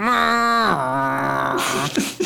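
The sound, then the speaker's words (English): A foghorn sound effect: a loud, low, buzzy horn blast held for about two seconds, its pitch sliding down partway through before it breaks into a rough, noisy tail. “Foghorn. That's correct. Foghorn.mp3.”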